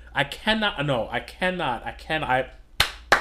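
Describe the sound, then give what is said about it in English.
A man talks, then two sharp hand claps ring out in quick succession once his speech stops. “I gotta clap it up because my man's lineup is sharp.”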